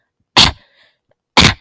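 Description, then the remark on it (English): Two loud, harsh throat-clearing bursts, each short and gritty, separated by about a second of quiet with only a faint rasp trailing after the first one. “Do you hate it when every second of every day your roommate is constantly trying to clear their throat?”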